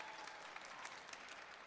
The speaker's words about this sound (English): Little too much cheering there.